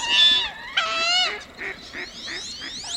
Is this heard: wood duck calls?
yes